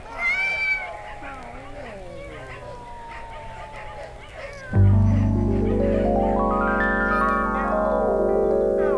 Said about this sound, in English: Oh, it's all these cats around us.